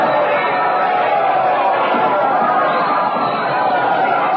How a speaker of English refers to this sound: She's just come out on the balcony. The Lord of the Castle is with her, also her Secretary of State, Lord Walsingham. The crowd has seen her. They're cheering. Listen to that ovation.